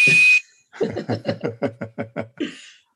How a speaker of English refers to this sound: You need a little puff with the bosun's whistle.